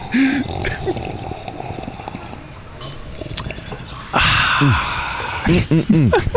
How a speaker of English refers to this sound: Take a sip of coffee here.